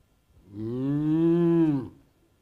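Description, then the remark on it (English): A single cow moos once, a long, steady, low bellow lasting about a second and a half, loud, with no talking around it. “What might they have said if donkey, cow, sheep, and dove had been able to tell the story of the lowly stable strewn with hay?”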